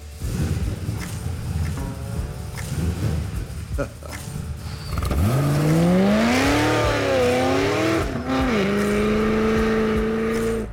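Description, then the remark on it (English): An LS V8 car engine revs loudly as the car passes, its pitch sweeping up and down before settling into a steady roar, after a few seconds of murky background noise. “It's definitely got that LS sound to it.”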